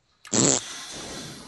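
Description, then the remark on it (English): A short, loud, raspy burst lasts about a third of a second, like a voice imitating a fart with the lips, done as an impression of a massive explosion. A softer, steady hiss trails on afterward, with no talking. “At least I didn't do a fart impression for a massive explosion.”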